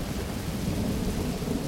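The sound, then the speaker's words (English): Deep, heavy thunder rumbles steadily and loudly throughout, with the hiss of rain underneath and no voices, as if the storm is close overhead. “Finally, the lightning strikes and thunderclaps feel like they're right on top of us.”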